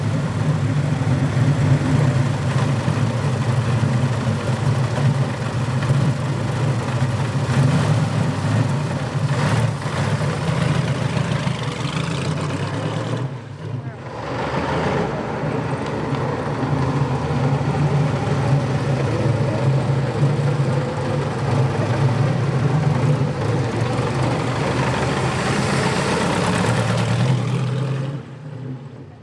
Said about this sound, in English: So to the delight of an enormous crowd, as soon as you bring the Napier Railton out and that growl, people appear from everywhere.